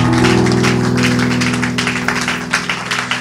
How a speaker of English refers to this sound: Praise the Lord. Hallelujah. Let's give God a clap like we're happy to be in the house of the Lord.